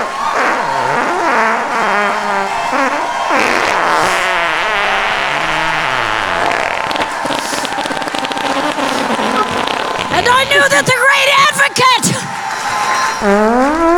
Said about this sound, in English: didn't add the grunts and sniffles or anything like that. I simply just added farts where there was blank space, where she wasn't speaking.